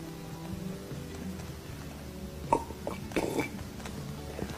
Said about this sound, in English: Oh, that's a fine big gulp.